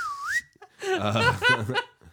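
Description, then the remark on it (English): A quick whistled glide dips then swoops upward like a slide whistle, likely a person imitating one, followed by a burst of chuckling, laughing voices. “Like a slide whistle out your butt. Slide whistle.”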